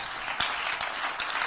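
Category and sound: crowd, audience clapping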